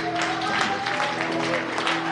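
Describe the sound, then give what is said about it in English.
An audience claps their hands together in praise and thanksgiving to the Lord, a dense, continuous wash of applause, with sustained organ-like tones humming steadily underneath. “Can we just give the Lord a hand clap of praise, of thanksgiving for his presence that we feel here?”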